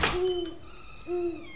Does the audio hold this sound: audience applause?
no